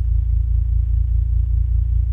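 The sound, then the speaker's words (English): Gravitational waves from two black holes smashing together, converted into sound by MIT professor Scott Hughes: a loud, steady low rumble with a faint rapid pulsing throughout, no voices, holding level for about two seconds. “What we're hearing are gravitational waves.”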